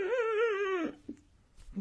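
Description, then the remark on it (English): A voice imitates a tiny, sad violin: one thin, wavering, whiny note with a trembling vibrato, held for under a second before sliding down and fading into faint, quiet noises. “That was my violin.”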